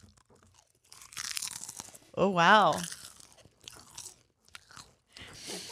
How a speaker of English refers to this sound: Popcorn sponsorship. Tough sell on a podcast because you want to eat it the whole time, but you don't want to be the chewing. I don't want to sound like a horse.